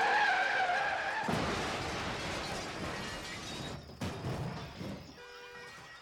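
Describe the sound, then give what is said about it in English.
Tires squeal sharply as a car veers off the road, skidding roughly over a loose surface for a few seconds before a sudden crash, followed by scattered debris and a lingering metallic ring. “Lillian died in a car accident on New Year's Day in 1971. Lindsley had been driving and veered off the road.”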